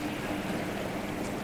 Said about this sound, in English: And here comes the boat.